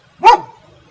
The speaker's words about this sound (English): And my dog is barking at the kids that have been around here all weekend.